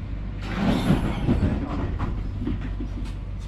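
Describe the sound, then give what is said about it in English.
A tram rumbles steadily along rails, a low continuous roll with faint metallic clatter and a broad hiss swelling early, then settling into an even drone. “If you don't mind as well, I think I need to do something about this tram.”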